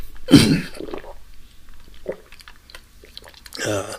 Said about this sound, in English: excuse me, my throat's a little getting coughed up here.